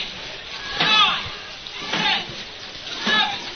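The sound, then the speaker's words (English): Water is dumped from buckets into a barrel in three rushing splashes during a timed competition, each roughly a second apart and fairly loud, with indistinct voices murmuring in the background. “First bucket in the barrel.”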